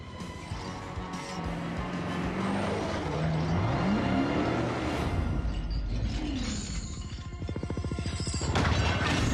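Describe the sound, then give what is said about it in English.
Roaring car engines rise and fall in pitch through a chaotic, loud film car chase staged on the land of a sugar mill farm, with rumbling mechanical noise, screeching, and heavy crashing impacts building toward the end. No one speaks. “It was a farm that had a massive footprint, and we got to use all of that land to do this car chase.”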